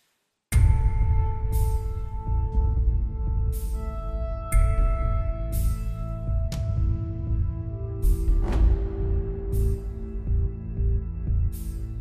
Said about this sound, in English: Insert suitable funereal music here.